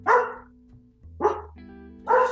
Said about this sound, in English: Sorry, my dog.